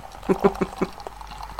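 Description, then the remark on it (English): Special bitter beer glugs out into a glass in a short series of gurgling bursts, fairly quiet, tapering off toward the end over faint background noise. “Let's crack it open. Let's pour it.”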